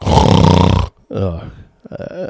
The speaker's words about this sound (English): On the first day of the trial, the prosecutor opening statement lasted 2 hours. Yawn.